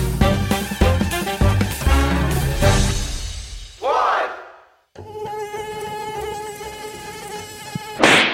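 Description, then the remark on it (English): Music with punchy drums fades into a brief pause, then a mosquito's high, steady whine buzzes loudly for several seconds, its pitch barely wavering. “Spreading diseases such as dengue, Zika and West Nile fever, mosquitoes are a troublesome insect.”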